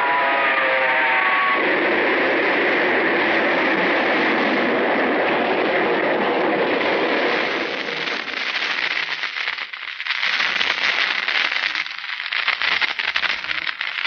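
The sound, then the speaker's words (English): A train engine thunders past on the track: a loud, continuous rushing roar, opening with a brief tonal whine, then thinning into a flickering, rattling rumble toward the end. No voices. “The light on the engine picked him up a quarter of a mile away, and I whistled.”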